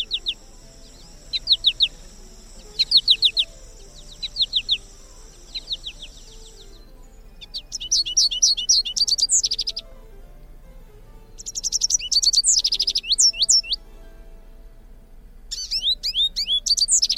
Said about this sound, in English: The American goldfinch is a favorite of many for its beautiful colors, its bounding flight pattern, and the sweetness of its song, like this.